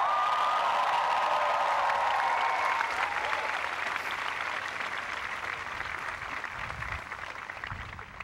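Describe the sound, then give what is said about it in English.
A large Dartmouth Class of 2011 commencement audience bursts into sustained applause with cheering and whoops, a dense wash of clapping that stays loud throughout and eases slightly toward the end. “all commencement speakers who shamelessly pander with cheap inside references designed to get childish applause will be forced to apologize to the greatest graduating class in the history of the world, Dartmouth Class of 2011 rules!”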